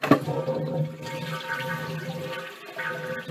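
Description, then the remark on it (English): A toilet flushes with a steady, full rush of swirling water that holds for a few seconds, a faint constant hum running beneath it. “If you put your phone to your ear, you can't hear people flushing the toilet.”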